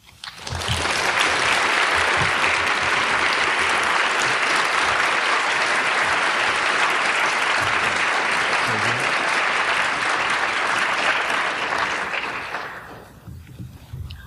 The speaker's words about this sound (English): I think we'll have another round of applause for our readers today. You guys are great.